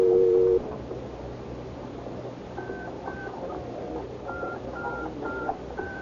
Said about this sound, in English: I crossed to the phone booth, and following instructions, I picked it up to listen for the dial tone before I dropped the dime in.